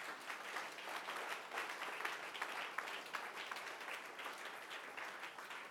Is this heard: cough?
no